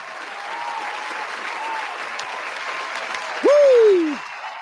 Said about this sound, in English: Shout out to everybody out there in the chat. Got to give y'all a round of applause.